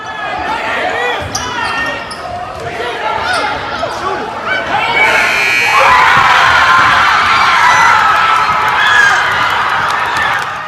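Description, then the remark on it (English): A crowd at a boys' basketball game against Groves shouts and calls out over bouncing and sneaker noise, then erupts midway into a loud, sustained roar of cheering and screaming after a buzzer-beating winning shot. “but the guys also had a buzzer-beating win to beat Groves. So this one is pretty hype as well, so check it out.”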